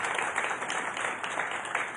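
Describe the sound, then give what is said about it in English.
Steady applause from an audience giving the Lord a hand clap, a dense wash of many hands clapping at once with no pauses, fairly loud and sustained throughout, with no voices heard over it. “Come on, y'all give the Lord a hand clap for that.”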